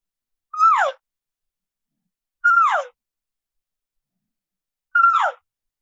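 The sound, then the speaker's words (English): Three cow elk calls imitated on a caller as the opening of a calf-and-cow calling sequence on a ridge line: short, nasal mews that start high and slide downward, spaced about two seconds apart with silence between and no talking. “I start off with cow sounds.”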